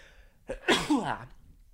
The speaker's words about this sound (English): And I sneezed.